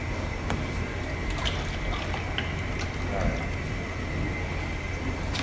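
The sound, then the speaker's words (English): Cooking oil, about 2 gallons from a 3-gallon container, pours steadily into a pot for boiling: a continuous liquid rush with small splashes and ticks scattered through it, holding an even level for several seconds. “So we've poured about, what is this, 3 gallons? 3 gallons, we poured about 2. We are boiling some oil.”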